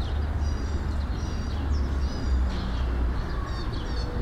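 A small bird, a sparrow, chirps in a steady series of quick, high twitters over a constant low rumble of outdoor background noise.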